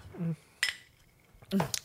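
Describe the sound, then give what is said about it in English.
Glasses of Irish gin clink together in a toast: two short, bright, ringing taps about a second apart, with brief murmured voice sounds around them. “Well, shall we cheers before this gets any messier?”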